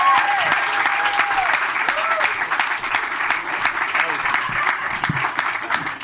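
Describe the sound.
An audience claps in a sustained, dense round of applause lasting several seconds, steady and fairly loud, with faint cheers and voices mixed into the clapping.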